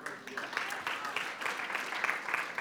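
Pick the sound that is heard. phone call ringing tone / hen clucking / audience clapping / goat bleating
audience clapping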